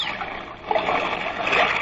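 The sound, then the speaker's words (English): A loud water sound: a single heavy splash lands partway through as a man falls overboard from a boat, then water keeps churning and sloshing. No voices are heard. “Man overboard! Man overboard! What am I yelling for? It's me.”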